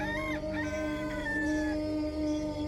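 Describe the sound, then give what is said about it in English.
A rooster crows in a long, wavering call that rises and falls, heard over a steady humming drone that continues underneath for the whole stretch. “Again, Peter denied it, and at that moment, the rooster crowed.”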